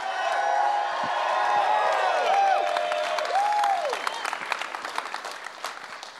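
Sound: audience clapping and shouting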